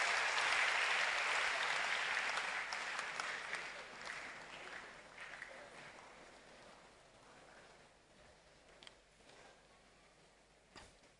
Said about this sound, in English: Hallelujah. Clap your hands for the Lord and you may be seated.